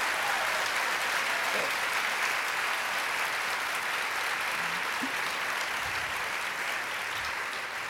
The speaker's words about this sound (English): And the other thing is that there may be times when I ask you to applaud spontaneously, just for pure ego gratification. But also because we need actually a nice, clean bit of applause.